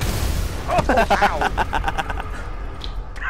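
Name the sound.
video game explosion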